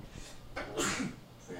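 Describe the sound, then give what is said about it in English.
A single sharp sneeze bursts out, preceded by a quick inhaled breath and followed by a brief exhale, fairly loud. “Bless you.”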